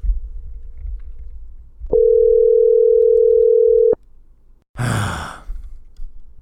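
A telephone dial tone after a caller's phone dropped the call: a steady electronic tone hums at one mid pitch for about two seconds, loud and unbroken, then cuts off; a short breathy sigh follows over low background rumble.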